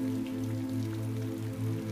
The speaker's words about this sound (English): You raise the kettle, and the water pours out of the slender, long spout in an elegant stream, splashing on the tea bag as water splashes on the earth, flowing out of the gutters around the cabin.